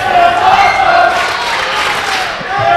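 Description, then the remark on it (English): A large crowd roars and cheers continuously at a wrestling match, a loud sustained wall of voices with shouts rising and falling, no single speaker standing out. “As you can hear from the crowd, this is awesome.”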